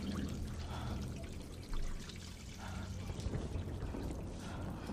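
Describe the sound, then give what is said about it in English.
Rain falls in a steady, dense wash of hiss and patter, holding at an even level for the whole stretch with a brief swell partway through and no voices. “Why'd the rain stop? Someone turned off the valve.”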